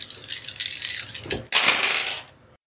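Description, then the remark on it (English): Green and yellow dice are rolled for a brawl in a tabletop game, rattling and clattering across a hard surface, a busy jumble of clicks that pauses briefly, then a second loud tumble that slows and fades to silence. No one speaks. “How do you guys keep hitting the blank side? That dice is weighted.”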